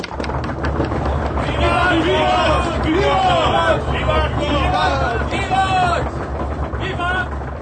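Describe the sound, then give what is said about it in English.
A lecture audience bangs loudly and steadily on desks in approval while many voices shout the Latin word vivat in unison three times after Schiller's lecture, the rapping continuing underneath the rising, drawn-out calls. “The listeners bang on their desks enthusiastically and call out the Latin word vivat, may he live, three times.”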